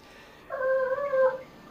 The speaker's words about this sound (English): That's my friend's dog.